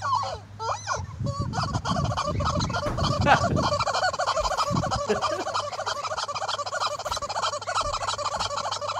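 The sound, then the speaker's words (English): Loud, continuous clucking and squawking from a chicken and other poultry, a busy chorus of birds calling over one another with low rumbling noise underneath. “He's got a chicken.”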